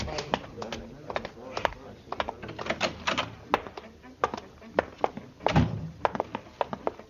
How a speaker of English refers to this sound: They beat down the doors.